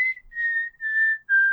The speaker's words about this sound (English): There's one little bit of whistling that I had to really struggle to get that high C out. But at live shows, I found that I might be improving my whistling range.